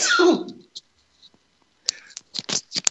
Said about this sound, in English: I have to sneeze. Sorry.